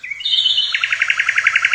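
A bright bird chirp sound effect, a Twitter bird sound: a short whistled rising note followed by a rapid, evenly pulsed series of high tweets, clear and loud with no talking.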